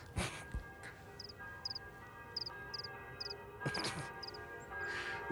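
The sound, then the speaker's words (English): A church bell rings with a steady, sustained hum, while short paired high chirps repeat at a regular pace over it and a few soft thumps break in. “Pay no attention to the church bell.”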